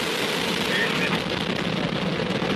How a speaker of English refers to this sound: Second umbilical retract. Vehicle switch to internal power. Start of the initiation sequence. Engines are throttling up.